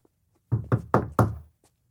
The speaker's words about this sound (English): So who wants to knock on the door? The old guy? We'll take it. Okay.